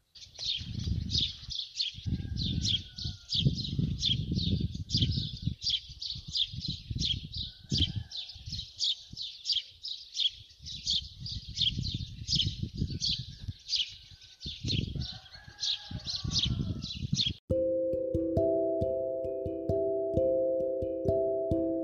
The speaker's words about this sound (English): I hope that you enjoyed the birds twittering